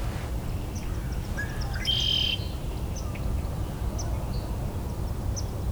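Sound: swamp sparrow calls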